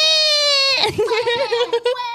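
baby crying

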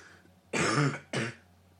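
cough

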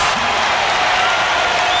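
arena crowd cheering

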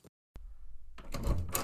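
door being opened

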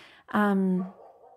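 neighbor's dog barking

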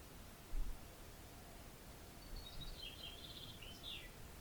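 birdsong

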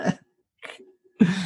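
sneeze

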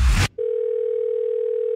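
telephone dial tone

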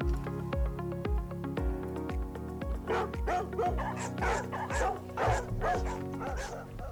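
dogs barking

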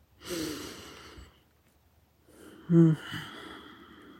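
deep belly breathing

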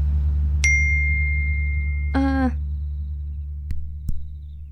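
wind chimes ringing

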